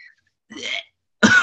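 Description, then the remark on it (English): Two short, rough coughs, the first a muffled hack and the second a sharper, louder burst after a brief pause, with no talking. “Sorry, the cough ball.”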